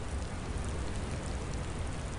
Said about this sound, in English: It was an eerie, dark, stormy night in a far-off sea. 100-foot waves crashed and cold rain poured. It was the dead of night, foggy cold air and the sound of water echoed across the sea.